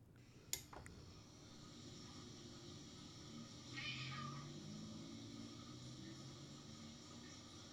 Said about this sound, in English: It's a cat, and it meowed at the door, and now it's like up against the door frame between the door, which by the way has like 18 locks on it. He's just like right up there meowing at it,